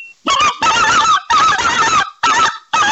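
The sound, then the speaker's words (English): A hunter blows a hand-held goose call imitating a speckled-belly goose: five loud, reedy yelping notes in a quick, slightly uneven rhythm, with no talking. “You know, when you talk about waterfowl, this is a speckled belly, and you've got to have so many, so much understanding and different techniques to be able to blow these calls.”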